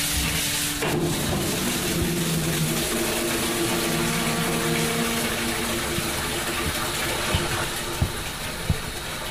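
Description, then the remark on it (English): Water pours steadily into buckets being filled, with a constant rushing hiss and a low hum, joined near the end by a few sharp knocks. No one speaks. “Go fill up your buckets with water, would you?”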